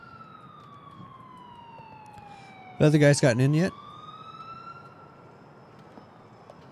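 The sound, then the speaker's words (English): A police siren wails steadily throughout, its tone slowly sliding down and then rising again. A person speaks briefly over it partway through. “I, you know, I hear sirens. Cops.”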